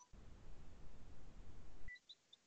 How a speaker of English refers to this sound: I swear to God, every time we do this fucking show, my fucking phone rings. Every goddamn time.